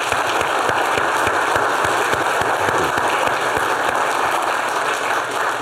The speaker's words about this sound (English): So I think a huge round of applause for them.